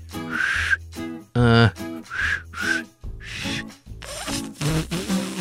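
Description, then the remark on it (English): Someone whistles a short tune, a handful of brief breathy notes rising and falling with small pauses between them, and no talking. “Can you whistle? 你会吹口哨吗？ I can.”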